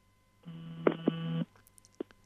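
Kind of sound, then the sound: signal or alarm, phone alarm going off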